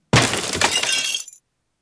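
A cup shatters in one loud, bright crash, followed by a second of scattering, tinkling shards that fade quickly into silence. No voices are present.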